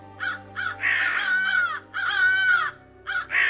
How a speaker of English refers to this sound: Oh boy, that's a lot of birds!